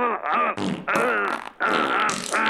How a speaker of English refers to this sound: Oh, you little biatch. Have a machine gun fart. Here we go.